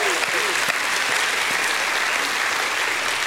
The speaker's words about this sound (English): If he's picked you up, give him a hand clap and a shout of praise.